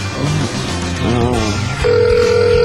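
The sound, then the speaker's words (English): A phone rings out over a speakerphone: after a moment of muffled room noise and faint voices, a steady electronic ring tone starts and holds to the end, fairly loud. “Is it ringing? Yeah.”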